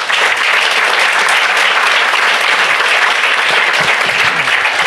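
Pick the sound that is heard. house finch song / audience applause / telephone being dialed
audience applause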